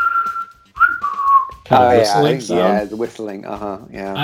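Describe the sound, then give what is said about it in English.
A clear whistle sounds first: a held note, then a quick swooping glide like a catcall. After about a second and a half, strong vocals in a song take over and fill the rest. “It's whistling, that kind of sounds like a cat call in some ways.”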